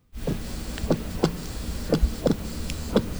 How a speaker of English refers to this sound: Can you hear this? Yeah, sounds like a heartbeat. Yeah, like the heartbeat. Is it a healthy heartbeat, though? I have no idea.